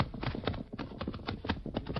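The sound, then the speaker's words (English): Horse hooves clip-clop at a steady walking pace, fairly loud, a regular run of hollow knocks as the dismounted rider leads the horse into a cut, with no voices over it. “Dismount, Tonto. Lead your horse into this cut.”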